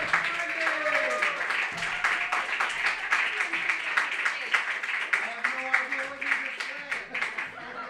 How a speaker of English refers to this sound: I said I clapped for you all the way until you made it up to the stage.